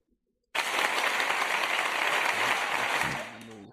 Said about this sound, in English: It sounds like 1,000 chicks clapping their asses. What? or an auditorium standing for a loud ovation, like, maybe, like, that I think it's that one right there.